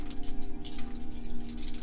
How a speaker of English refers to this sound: Everyone who's staying in, make your roll. Hold on. I got way too many dice.